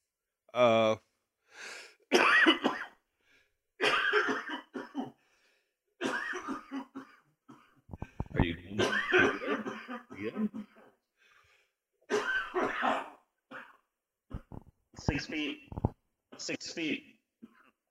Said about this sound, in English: You can cough as much as you want,